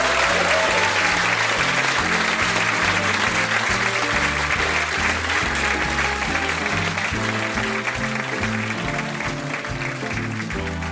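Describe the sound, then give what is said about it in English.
A crowd claps steadily and loudly for about ten seconds, a round of applause for David O'Doherty: a dense, sustained wash of applause that holds level throughout with no voices standing out. “But perhaps we could give David O'Doherty a round of applause.”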